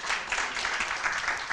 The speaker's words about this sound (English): Give the Lord a hand clap if you are encouraged today.